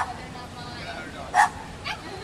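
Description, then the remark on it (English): Two sharp, yappy barks from two small dogs ring out a half-second apart over a steady background of murmuring voices and ambient noise. “Those dogs are a bit loud there”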